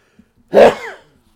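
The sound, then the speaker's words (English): A single loud sneeze, held back for a couple of minutes, bursts out sharply and trails off in a brief, voiced tail, with quiet silence before and after. “Had to sneeze. Sorry about that.”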